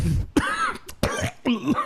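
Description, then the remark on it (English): Three or four harsh, raspy coughs in quick succession from a man coughing up blood, fairly loud, with throaty rasping between the bursts and no talking. “there's so much blood he's coughing up right now”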